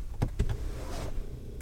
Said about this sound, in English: It's so quiet. The loudest thing about turning on the car is that your seat moved forward.